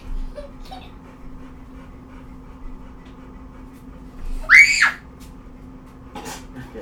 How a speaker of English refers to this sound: We don't need to scream anymore.